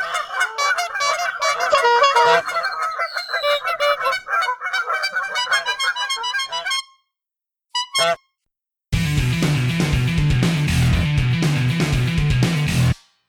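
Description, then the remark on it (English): A flock of geese honks loudly and rapidly in an overlapping chorus for several seconds, then falls quiet; a short honk follows before a dense, rhythmic, low-heavy sound takes over. “In the absence of any sort of credible punchline, let's stick with the geese.”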